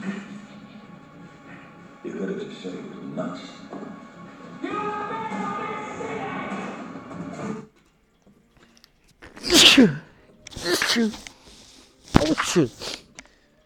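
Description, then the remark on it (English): Someone talks for several seconds, then after a brief pause comes a run of three loud, sharp sneezes in quick succession. “James Harden's play that day would have me sneezing like that too.”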